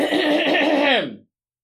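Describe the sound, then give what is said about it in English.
A person clears their throat once, fairly loud, in a drawn-out, voiced rasp lasting about a second that dips in pitch at the end, with no talking around it. “You clearing your throat again? Yes, I am.”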